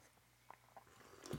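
Someone takes a quiet sip of hot tea with honey, a soft slurping draw near the end, preceded by a few faint mouth clicks and swallows. No one speaks.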